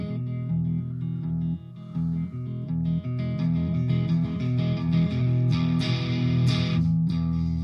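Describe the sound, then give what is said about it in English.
A distorted electric guitar, played through a DS1 distortion pedal on the neck pickup, plays sustained chords and notes at steady volume, with a bright, fizzy sizzle riding on top of the thick low-mid tone. No one speaks. “Yeah, there's like a sizzle to it.”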